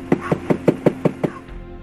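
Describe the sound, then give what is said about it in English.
A quick, evenly spaced series of about seven knocks on the door of a travel trailer, fairly loud, with a slightly hollow ring and no voices. “let me just knock on his door.”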